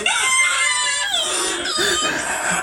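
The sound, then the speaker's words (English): A video plays of people imitating a donkey's bray with loud, strained, nasal voices: a continuous harsh call with wavering pitch that dips, then a second rising heave, ending abruptly after under three seconds. “Why is your donkey noise actually so good?”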